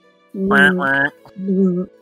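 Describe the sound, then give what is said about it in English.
A voice imitates a sword vibrating in its sheath like a cell phone, making three steady, buzzy hums: two quick ones back to back, then a short pause and a lower, softer third buzz. “Can we hear it vibrate in the sheath like a cell phone?”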